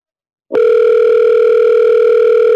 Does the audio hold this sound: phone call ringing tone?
yes